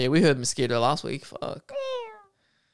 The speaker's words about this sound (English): Oh, that's a cat.